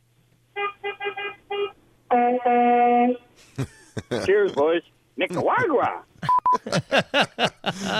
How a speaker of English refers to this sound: Kind of feeling a little disappointed with these horn honks, so I thought I'd step it up a bit. Listen to this one.